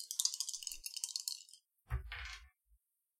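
Dice rattle in a cupped hand for about a second and a half, then tumble onto a table with a short clatter and one last small tap. Fairly quiet, no voices.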